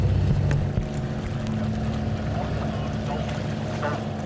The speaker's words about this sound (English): Boats just slowed down to a halt, and just all around us now there are the backs of bottlenose dolphins breaking the wave.